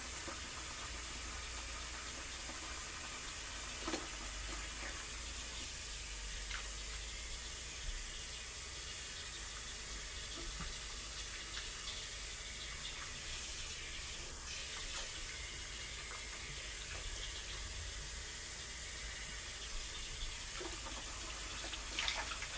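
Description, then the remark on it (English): A sink faucet runs steadily, a continuous rushing hiss of water with occasional soft splashes and knocks as hair is rinsed of deep conditioner under the stream. No one speaks. “But for the purposes of this podcast, I have to use the sink.”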